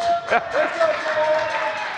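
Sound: faint applause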